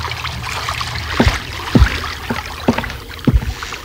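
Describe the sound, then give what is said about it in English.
A small boat moves across water, with a steady wash of water and a handful of paddle splashes and hollow knocks against the hull every half second or so, no voices. “You have to tie the boat to the dock.”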